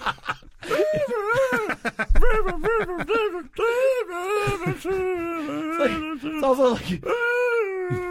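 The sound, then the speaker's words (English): A person imitates a seal, letting out a quick run of short, choppy barks followed by longer, wavering, moan-like honks that rise and fall in pitch, loud and without other talk. “weird barking sounds actually kind of sounded more like a seal”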